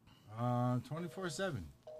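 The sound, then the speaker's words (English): A voiced, humming sound with shifting pitch fills most of the moment, then a short, clean, steady electronic telephone tone comes in near the end, from an outgoing phone call to a Denny's restaurant. “So we're going to see if this Denny's answers.”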